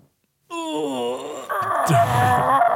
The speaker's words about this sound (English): Because that fucking fart sounded like that was something we pulled out of beast.